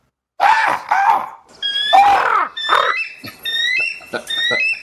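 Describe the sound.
An eagle cry sound effect: a string of shrill, high-pitched screeches, some sliding downward, followed by quicker stuttering chirps, loud and unaccompanied by talk.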